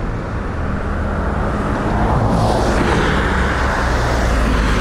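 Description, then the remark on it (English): A car rushes past on a street, its steady road noise swelling to a louder whoosh midway through before continuing as a broad, constant rumble. No one speaks. “Every time a car goes by, the draft from the car makes the fur on his coat ripple wildly like tall grass on the prairie.”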